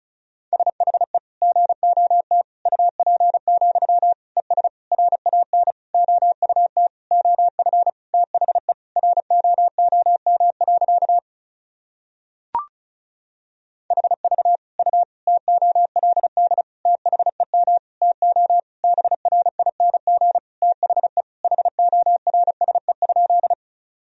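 Rapid Morse code at 35 words per minute sending practice sentences built from the top 500 words and abbreviations: a single steady mid-pitched tone keyed in quick dots and dashes, broken by a short silent pause with a faint click partway through. No voices.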